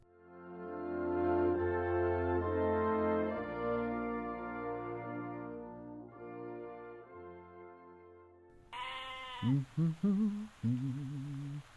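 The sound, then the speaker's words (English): Sustained musical chords hold for several seconds, then give way to a few loud, quavering goat bleats in quick succession. “We got goats.”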